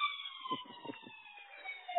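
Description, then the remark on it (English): A fire engine siren wails steadily with a slow downward pitch glide, as if passing by, with some low rumbling bursts of traffic or engine noise underneath. “Oh, there's the Daily Fireman.”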